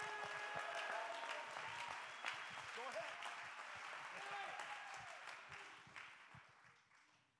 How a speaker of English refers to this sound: Go ahead and clap your hands. Go ahead and lift your voice. Go ahead and give him praise.